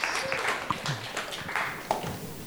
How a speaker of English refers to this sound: Come on, I need a round of applause there. We did it!